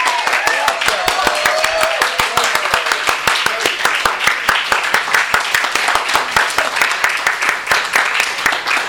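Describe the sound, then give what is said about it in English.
A crowd in a bookstore applauds steadily for several seconds to welcome writers to a reading, dense overlapping hand claps forming a loud, continuous patter with faint voices mixed in. “There's some folks that just walked into the bookstore as soon as the applause started right there, and they're feeling incredibly famous at this point.”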